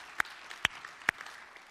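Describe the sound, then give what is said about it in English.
A church audience applauds its pledge giving, a soft steady patter of many hands with three sharp claps standing out at a regular pace. No one speaks. “That's worth clapping over.”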